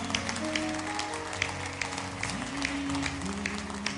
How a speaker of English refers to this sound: If you have been blessed this morning, I want you to clap your hands.